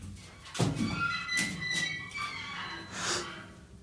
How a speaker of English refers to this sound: God. He's dropped the torch.